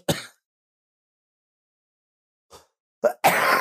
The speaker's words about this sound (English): Not cutting any of those coughs out. Oh, good. That's going to make for great content. Yeah, I know. So this is the artist. Everybody wants to hear you violently cough.